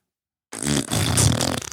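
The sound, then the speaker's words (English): A loud, buzzy fart noise, likely blown with the mouth as a raspberry, starts abruptly after a short silence and sputters on for just over a second before cutting off. “Fart noise.”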